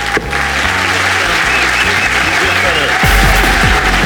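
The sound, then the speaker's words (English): A theatre audience at the Leicester Square Theatre applauds loudly and steadily, a dense wash of clapping that swells slightly louder toward the end, with a low murmur of voices underneath. “Will you please give a massive round of applause to Shappi Khorsandi, ladies and gentlemen?”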